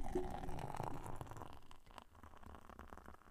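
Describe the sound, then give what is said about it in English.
Beer pours steadily into a glass, a gurgling splash that gradually softens into a quieter fizzing trickle as the glass fills and a head of foam forms, with no voices. “Now remember, when you pour a beer, you want to have a significant head on the beer.”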